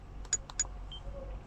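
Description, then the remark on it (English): Two short, bright electronic chirps from a handheld game as the select button is pressed to save the game, followed by a faint, thin tone, confirming a save over a low background hum. No one speaks. “I'm not going to forget to hit the save button, the select button which saves the game. There we go.”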